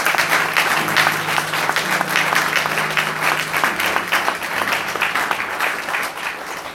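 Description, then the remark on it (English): An audience claps steadily for God at the end of a sermon, a dense, continuous wash of many hands filling the room at a lively, even pace with no voices rising above it. “But like, oh, you want to clap to God? Let's do it.”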